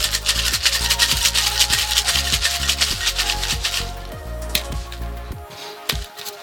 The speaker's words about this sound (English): And then I'm gonna fill this shaker up with a lot of ice. And give it a good shake.